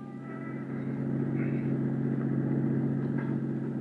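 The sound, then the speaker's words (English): A car engine hums steadily as the car cruises an area street by street, a low, even drone that swells slightly after the first half second and holds at a constant cruising pitch throughout. “So I decided to cruise that area street by street.”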